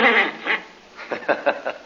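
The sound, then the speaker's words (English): A raspy, cartoonish Donald Duck voice quacks and squawks in a quick run of nasal bursts, fairly loud, a voice imitating a duck rather than a real bird, reminding listeners that he and Mickey Mouse appear in the Comic Weekly. “Donald Duck says to remind you that he and Mickey Mouse can be found in the Comic Weekly.”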